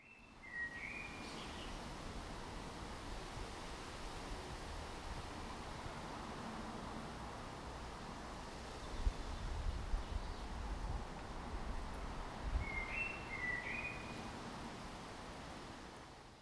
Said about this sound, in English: It's so easy to take for granted the sound of birds.